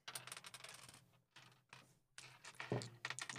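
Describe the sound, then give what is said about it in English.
Dice rattle and clatter in a few quick bursts as someone fidgets with them in a hand, not actually rolling them, with brief pauses between. Fairly quiet, with no voices. “If you hear my dice rolling, I'm just fidgeting, so I'm not actually rolling.”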